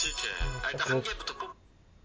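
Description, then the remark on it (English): A mobile phone chirps out a short melodic notification tone, bright, lasting about a second and a half before cutting off to near silence. “Sorry, my phone just decided to make a noise.”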